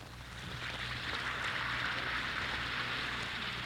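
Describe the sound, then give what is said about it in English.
A steady, dense fizzing hiss of an Alka-Seltzer tablet dissolving in water, crackling with countless tiny bubble pops, sustained and fairly loud throughout with a faint low hum beneath and no talking. “Listen to It Fizz.”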